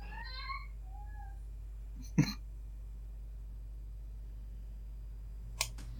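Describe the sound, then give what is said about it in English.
A cat gives a short, fairly quiet meow at the start, followed by a sharp click or knock and, a few seconds later, another brief tap. No one speaks. “I got bit by a cat”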